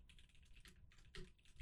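Rapid, clattery typing on a loud computer keyboard, a quick run of sharp key clicks with slightly louder strikes near the end, no voices.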